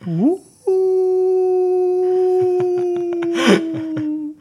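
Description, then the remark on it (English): A person imitates a wolf howl: a short rising whoop, then one long, steady held note that wavers slightly and fades out, with brief noises and a burst of sound near the end. “And maybe sort of do a mock wolf howl in the mountains to sort of attract them now.”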